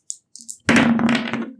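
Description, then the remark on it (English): Dice rolled on a table for an insight check: a few light, sharp clicks, then a loud burst of rattling clatter as they tumble and settle over about a second. No one speaks. “I'm absolutely going to roll an insight check.”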